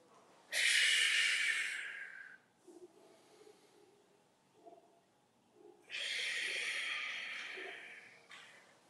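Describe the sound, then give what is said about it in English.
Two loud, forceful breaths taken while doing squats, each a long airy rush lasting about two seconds, separated by a few seconds of quiet with faint low sounds. “As you contract, you blow out. As you come up, you breathe in.”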